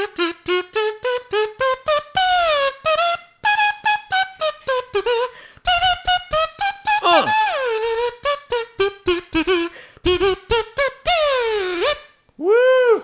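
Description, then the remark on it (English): An original classic Woodstock kazoo plays a buzzy, loud solo of short, choppy notes, its nasal pitch leaping and sliding up and down, ending with a few rising and falling swoops. “An hour and a half of kazoo solo.”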